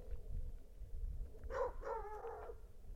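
A neighbor's dog in rural Canada barks a couple of times, set off by the flapping lid of a tin mailbox, the yelps somewhat drawn out and tonal, over a steady low outdoor rumble.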